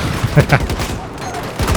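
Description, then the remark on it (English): Rapid automatic gunfire from a video game, a quick string of sharp, loud shots in an uneven burst that fades briefly before more shots crack near the end. “I'll shoot it up, yo.”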